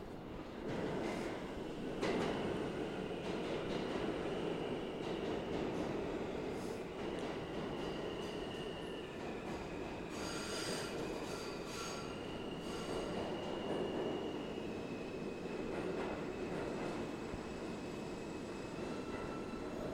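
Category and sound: vehicle, subway train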